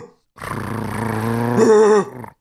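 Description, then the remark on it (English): A man's voice imitates a dog barking with a single drawn-out, throaty bark that swells and rises in pitch near the end, loud, with no other talking. “there's a dog on the floor, and she did not move at all when you barked.”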